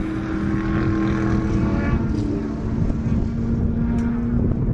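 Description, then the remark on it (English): A Corvette engine roars loudly and steadily as it passes, a deep throbbing drone with a rough, buzzing edge that holds strong for the whole stretch, with no voices. “That was a good roar too, son. It must have been a Corvette.”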